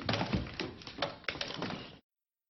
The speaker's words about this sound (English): And then he like tries to go out the sliding glass door and like can't unlock it.